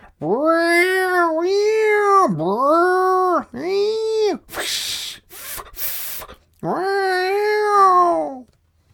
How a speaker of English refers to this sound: Then, all at once, came an ear-splitting sound of a caterwaul symphony echoing around.